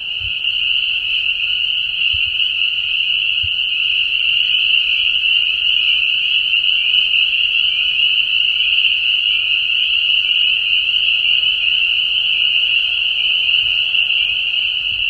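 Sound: frogs calling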